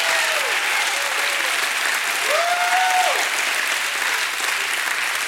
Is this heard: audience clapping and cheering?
yes